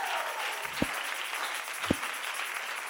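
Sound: audience clapping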